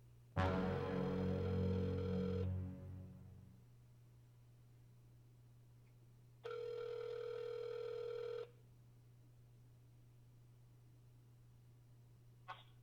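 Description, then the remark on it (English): A telephone line with a steady low hum, a dense burst of dialing at the start, then a single two-second ringing tone on the line, and a faint click near the end. “I gotta make a phone call.”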